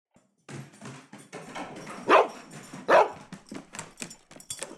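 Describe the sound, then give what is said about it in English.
A male dog named Murphy barks, two loud sharp barks standing out among a steady run of softer yips and whimpering noises, with no one talking. “Dog returns.”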